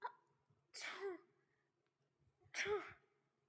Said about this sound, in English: I sneezed for the 1,000th time.